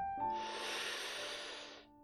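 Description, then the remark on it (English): A grandmother's single long, airy breath drawn slowly and steadily, soft, with a faint steady hum beneath it and no talking. “Finn takes in her honey scent and the sound of her slow, steady breathing.”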